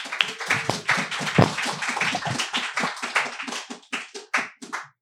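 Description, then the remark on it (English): A crowd at a book event applauds an author as they are introduced, with dense, steady clapping that gradually thins out, the last few scattered claps trailing off near the end. “Let's give a round of applause for Idris.”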